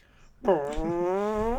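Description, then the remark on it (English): A long, buzzy fart rises out of near silence and holds a steady, wavering tone for over a second before cutting off. “Sorry, I farted.”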